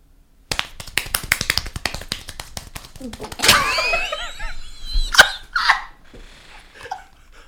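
Rapid hand clapping, a dense burst of sharp claps lasting a few seconds, followed by people reacting with laughter and exclamations.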